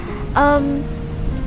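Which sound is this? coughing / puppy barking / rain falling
rain falling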